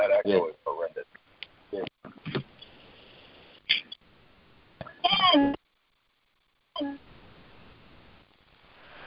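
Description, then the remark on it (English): Tinny, phone-line voices echo back in choppy, garbled fragments, cutting in and out with a brief dead-silent dropout before a low hiss of the call line returns. The echo comes from participants' phones that are not muted on a conference call. “Look at it and make sure you're muted, because that echo is horrendous.”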